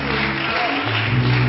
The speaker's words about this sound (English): Praise the Lord, everybody. Let's give God a hand clap of praise today.